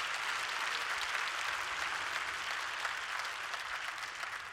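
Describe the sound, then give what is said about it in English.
A crowd claps hands steadily for several seconds in praise of God, a dense, even patter of many overlapping claps at a moderate, consistent loudness with no voices standing out. “If you believe it and want God to apply that to your life, clap your hands and praise God.”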